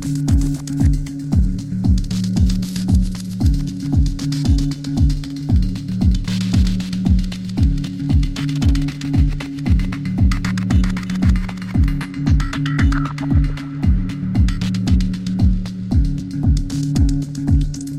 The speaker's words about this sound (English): think adding that reverb to the hats is kind of the biggest change, and I think I really like how it sounds. The only thing that's not going through that reverb is, of course, the kick.